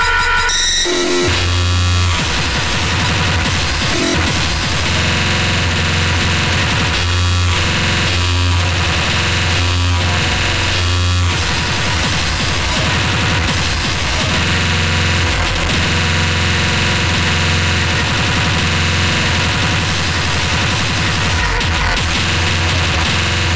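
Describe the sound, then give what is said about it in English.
A dense, abrasive wall of harsh noise music fills the whole stretch, loud and unrelenting, with crackling static, buzzing distortion and a heavy low rumble shifting chaotically throughout, no voices. “Some jittery dulcet tones, scat injector, mescaline mask.”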